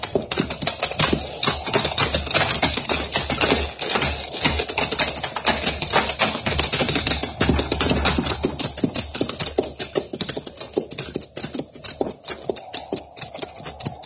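Horses' hooves clatter as a captain and Big Elk ride in, a steady, dense rhythm for the whole stretch, a loud, continuous patter of many quick hoofbeats with no voices.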